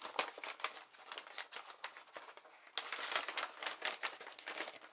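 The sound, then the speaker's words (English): Continuous rustling and crinkling of envelopes and check paper being handled, with repeated sharp crackly bursts as sheets and envelopes are shuffled and moved about, no voices. “I bought some check paper. You can see here.”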